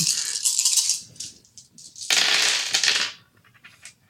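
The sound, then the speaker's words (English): A handful of ten dice rattles and clatters, first a shaking burst, then a louder tumbling spill across a hard surface, with a few small clicks settling at the end. Fairly loud, no voices. “So I'm rolling 10 dice against one purple.”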